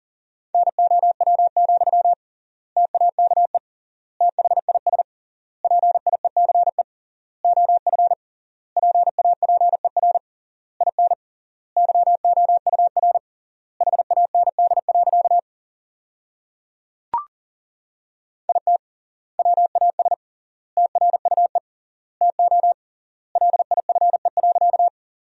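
Fast Morse code at 40 words per minute, sending sentences made from the top 400 words with triple word spacing, as a single steady mid-pitched tone keyed in rapid dot-and-dash bursts separated by wide pauses between words, with no voices and a brief click partway through.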